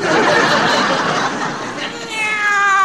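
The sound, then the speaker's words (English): A hungry male kitten meows in high, wavering cries, the clearest ones at the very end, following a busy, noisy stretch that sounds like giggling or snickering. “Well, it's a kitty cat.”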